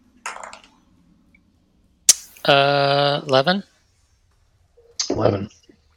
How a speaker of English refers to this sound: You roll me a perception check, please. Oh, try some old school dice here.